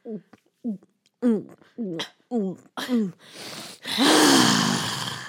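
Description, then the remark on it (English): A voice imitates someone loudly drinking water: six quick, rhythmic gulping sounds, then a long, harsh, breathy gasp with a strained vocal edge. “And no, you're breathing while you're drinking.”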